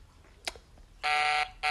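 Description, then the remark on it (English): The ringing tone of an outgoing phone call placed by the BTS Shout Out Show: after a brief click, a loud, buzzy, harmonic-rich tone sounds for about half a second, pauses briefly, then starts again and is cut off. “It's ringing.”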